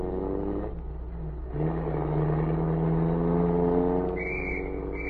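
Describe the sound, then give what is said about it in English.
A general's car engine revs up and pulls away, its steady hum climbing in pitch as it accelerates, loud. A brief high police whistle sounds near the end. “As the car pulled away, a police whistle sounded.”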